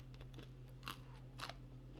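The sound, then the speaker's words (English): Two sharp crunches roughly half a second apart as a hard pretzel is bitten and chewed, over a steady low hum, with no talking. “Imagine I die in a pretzel after talking shit about this poor kid, Quinn. Man, that's a crunchy crunch.”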